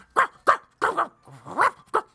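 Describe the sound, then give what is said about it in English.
A dog, Bango, lets out a quick run of short, growly barks and yips while tearing into a gift of booties, five or six bursts in about two seconds, with a brief whining rise in the middle. No one speaks. “As soon as you say it, he just starts tearing into it.”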